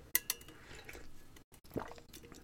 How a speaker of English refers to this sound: I'm gonna take a swig of water real quick.